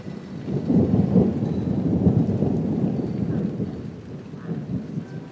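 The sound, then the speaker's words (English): Deep, rolling thunder from an approaching storm rumbles steadily over the steady hiss of rain, loud for a few seconds before easing slightly, then swelling again near the end. “Yeah, I've actually predicted that that would arrive just at about the time you arrived. Have you seen the weather radar?”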